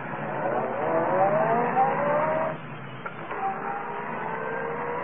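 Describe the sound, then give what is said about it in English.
A car engine starts and roars, its pitch climbing as it revs, then drops briefly with a small click before settling into a steady running hum. No one speaks. “Well, then start this car.”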